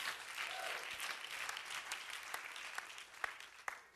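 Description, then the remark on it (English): An audience at a sermon gives itself two claps in a dense, sustained burst of applause, with a few sharper individual claps standing out toward the end and no talking over it. “Two claps yourself.”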